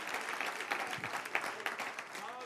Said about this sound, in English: Is it too early in my sermon for you to clap your hands and thank God for the power of the Holy Ghost?